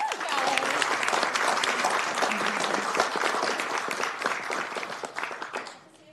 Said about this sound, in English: And please, everybody, if we can give a round of applause to the students of New Tech High School.